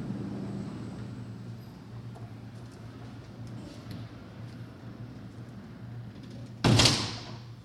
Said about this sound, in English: I'm just going to close the door over here.